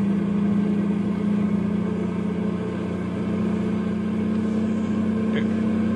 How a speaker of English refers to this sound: Les and his truckload of nitroglycerin is heading for Landslide. It's dawn now as Les starts his run downhill.